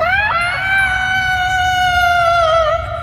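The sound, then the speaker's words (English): A loud, sustained, horrid scream of a dying ghost holds one high, piercing pitch for about three seconds, wavering slightly before trailing off, with no talking over it. “So you separate her in two, and she lets out this horrid screams.”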